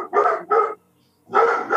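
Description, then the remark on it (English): A German Shepherd mix dog barks three times, two quick loud barks followed by a brief pause and a third bark, with no talking. “there's my dog.”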